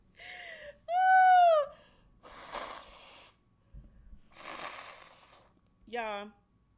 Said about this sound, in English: Y'all, I really gotta stop blowing my nose on this microphone. This is so disgusting.